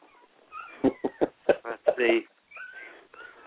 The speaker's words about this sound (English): The new crop of puppies from our dog Liberty Bell. She had a whole stack of puppies, and they're in here with me, so I'm trying to get them to be quiet.